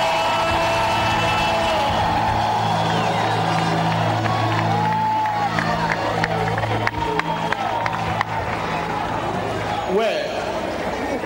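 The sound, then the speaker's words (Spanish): A large crowd cheers and shouts in celebration, a continuous loud roar of voices with scattered whoops and cries, sustained throughout with occasional sharper bursts. “Si tú no crees, dale tu mejor grito de celebración.”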